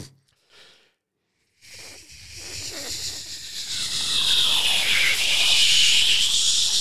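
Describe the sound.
A voice mimics a fighter jet taking off: after a brief pause, a breathy, hissing roar swells steadily louder and brighter for about five seconds, with no words spoken.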